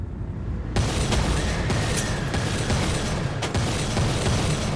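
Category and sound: sound effect, revolver gunshots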